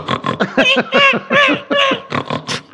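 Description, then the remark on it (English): A person imitates a pig, letting out a quick run of about ten loud, nasal oinks and squealing grunts, with no other talking. “You're a pig, she's a peacock.”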